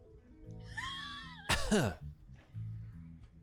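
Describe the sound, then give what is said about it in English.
A short, strained vocal hum rises into one sharp, rough cough, fairly loud, then fades back to a low, steady background rumble. “Cough for me real quick.”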